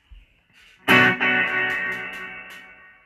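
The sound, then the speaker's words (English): A loud, distorted electric guitar chord rings out through a slapback reverb effect, with short echo repeats trailing over the sustained, slowly fading tone. No one speaks. “Slapback reverb. Now I can change that.”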